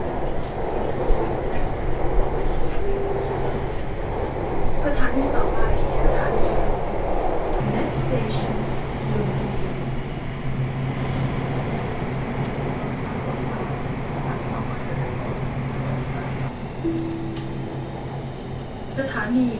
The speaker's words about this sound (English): Please mind the gap between train and platform.